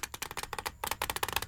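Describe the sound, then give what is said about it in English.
A deck of Uno cards is shuffled, a rapid crackling riffle of many quick flicks, with a brief pause midway before the fluttering resumes, with no voices over it. “One of the few ways I impress my daughters when we're playing Uno is my Give it one more go. Technique.”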